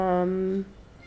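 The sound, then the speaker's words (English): A single drawn-out meow from a cat named Cubby, fairly loud, holding a steady tone for about half a second before cutting off into quiet background noise. “She wants to be included.”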